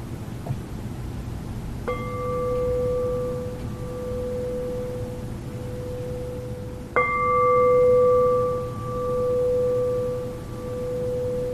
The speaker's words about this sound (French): Une présence, qui est pleine. Laissez-vous entendre la cloche.